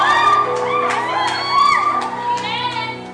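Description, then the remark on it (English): A large audience screams and shouts together, a loud, sustained wall of excited voices with high whoops rising above the roar for the whole stretch. “I've never heard this many screams in a while.”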